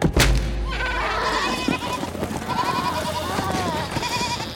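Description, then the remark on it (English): Several spooked goats bleat in agitated, overlapping cries, fairly loud, continuing throughout after a brief low thump at the start. “The spooked goats ran past Zagreus.”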